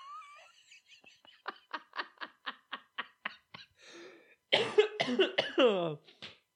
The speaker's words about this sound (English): Oh, now all the people vaping are like, yeah, that's right, smoker, with your cough. I've been smoking more recently.